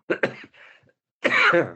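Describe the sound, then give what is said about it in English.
Two sharp coughs in quick succession are followed by a brief raspy breath, then a longer, harsher cough after a short pause. All are fairly loud, with no talking. “Once you develop a cough, it's difficult to get rid of, and it's also very intimidating for people listening, so I apologise once more.”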